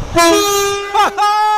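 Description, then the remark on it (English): A loud electric train, the Ilkley train, sounds its horn at about 8:35 in the morning, heard from a bridge: a steady harmonic tone dips briefly in a wavering bend, then sounds again, over a low rumble of the passing train. “It was a big one. Excellent. That was the Ilkley train at about 8:35 in the morning.”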